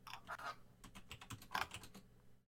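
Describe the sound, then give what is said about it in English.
Rapid computer keyboard typing as someone types in the game title "the Chronicles of N": a dense run of crisp, clicky keystrokes with uneven rhythm and a few louder taps, heard alone for a couple of seconds before stopping. “I like how they type in the Chronicles of N, and it's the third game down, but the second game is Out of the Park Baseball 19.”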